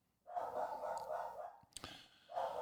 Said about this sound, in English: All right, Bella. Okay. You've been barking. That's okay. That's enough. Seriously. She's a Nova Scotia duck tolling retriever, and she's, I guess, around 12 years old now. Great dog. She's been a fantastic dog.